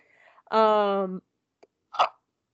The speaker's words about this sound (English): Oh, that was a painful tiny non-burp. Oh, God, it's so watery. Sorry, everybody.